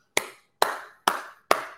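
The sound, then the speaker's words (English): Four slow, evenly spaced hand claps ring out on their own as a deliberate round of applause for two battle performers, Jada Nightwing and Mad Flex. Each clap is sharp and loud with a brief fading tail, and there are no voices. “Round of applause for both these gentlemen because they set the bar for damn near Battle of the Night.”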